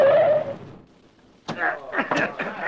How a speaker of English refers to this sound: Hey, easy on them brakes. Don't skid me tires.